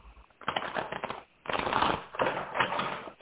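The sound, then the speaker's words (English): Rapid tapping and clicking of knocking on a deck of tarot cards, coming in three dense bursts separated by short pauses, with no one speaking. “Okay, I'm going to knock the cards.”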